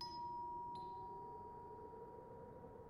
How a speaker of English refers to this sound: At 7 p.m. precisely, Carlos pulled open the black wrought iron gate of 48 Queens Grove, walked up the short unlit path to the Georgian mansion, and to the right of the black front door, he rang the doorbell.